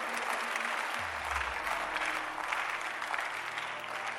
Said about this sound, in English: You are clapping like you are a suspect.